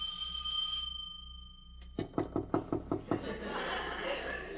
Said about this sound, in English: Should I ring or should I just knock intimately? I'll do both.